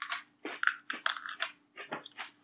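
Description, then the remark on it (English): Crunchy chewing of a cream-filled cookie, a string of crisp, irregular bites and crackles, with brief pauses between crunches and no talking. “I'll say both of these have a really nice crunch.”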